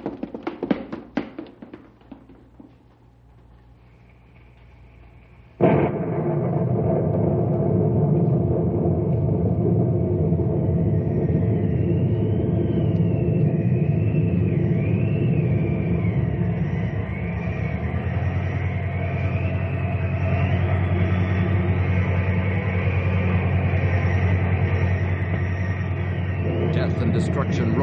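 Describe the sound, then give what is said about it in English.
A tornado funnel roaring as it moves into Knotty Pine, sweeping up the lumber yard, then lifts and draws back into the cloud: after a few seconds of low rumble and scattered taps, a loud, steady roar bursts in and holds, with a howling, wavering whine riding over the deep rumble. “The funnel is lifting. It's drawing back into the cloud.”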